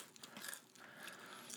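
Someone crunches on chips, a run of crisp, crackly bites and chewing that rises and falls over a second and a half, with no talking.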